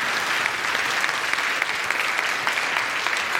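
A steady burst of applause from many hands, dense and sustained at an even loudness throughout, with no voices standing out.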